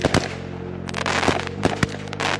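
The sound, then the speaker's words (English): Fireworks pop and crackle in a quick, irregular string of sharp bangs, fairly loud, with a steady low hum running underneath and no voices. “And there's absolutely no way I'm going to light off fireworks just because we hit this milestone.”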